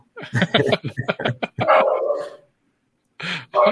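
Dogs bark as if somebody is at the door, a rapid, excited burst of several yaps, then a longer drawn-out bark, a short pause, and two more loud barks.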